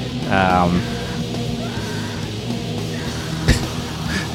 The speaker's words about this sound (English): So I'm literally laughing at the screaming.